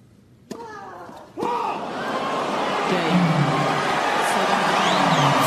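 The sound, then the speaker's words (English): A large tennis arena crowd at Rod Laver Arena in Melbourne stands and bursts into cheering after two sharp impact sounds, the roar of applause and shouts swelling steadily louder until the end. “The crowd stands at Rod Laver Arena.”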